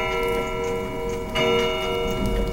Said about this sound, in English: Suddenly, the clock struck 3.